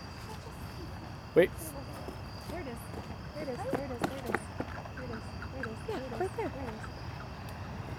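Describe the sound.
Bat calls, probably from a big brown bat flying around, come through an Echometer Touch bat detector as a series of dry, rhythmic clicks and ticks, with one sharp, louder click early on. People talk over most of it.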